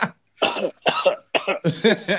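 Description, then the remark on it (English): A person coughs several times in quick succession, fairly loud, with harsh hacking bursts that run into a longer, rougher final fit. “Man, cough three times if you went dying.”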